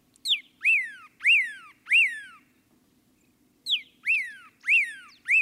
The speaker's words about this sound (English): And there's a pyraloxia, singing from atop a yucca.